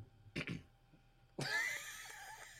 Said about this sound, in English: When the motherfucker clear his throat to tell you his feedback.